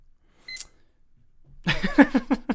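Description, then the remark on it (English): A single short, high electronic beep sounds from a timer, followed after a pause by a stretch of lively voices talking. “I don't have a joke for that beep.”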